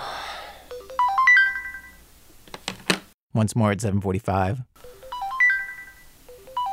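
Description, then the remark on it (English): A grad student's wake-up alarm on a Monday morning in Springfield, Oregon, chimes a bright, rising melodic phrase of tonal beeps. It stops while a voice speaks briefly as he shuts it off, then the same cheerful tune starts up again. “hears the alarm that is supposed to wake him up, and he shuts it off.”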